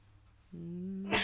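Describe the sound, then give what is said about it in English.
A single sneeze: a rising, voiced intake of breath builds for about half a second, then breaks into a sharp, hissing burst that ends abruptly. “I need to sneeze. Give me a second here.”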